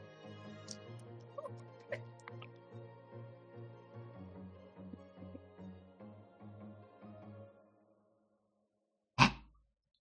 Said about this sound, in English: It's damage. Okay, let's roll some dice.